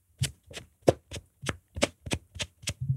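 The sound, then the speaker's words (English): A rapid series of about nine short, squelchy hand-and-armpit fart sounds, evenly spaced in a quick rhythm, each a brief wet pop with a low rumbling body, moderately loud with no talking. “It has been been so long since I've seen anyone do the like armpit fart.”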